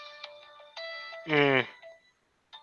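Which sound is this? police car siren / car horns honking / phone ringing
phone ringing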